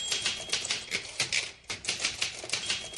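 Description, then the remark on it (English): Rapid, steady clatter of Carolyn Heilbrun typing at astonishing speed on her Smith Corona typewriter, a dense run of sharp mechanical clicks with only a brief pause midway, fairly loud with no voices. “We would wake up to the sound of her typing at an astonishing speed on her Smith Corona typewriter.”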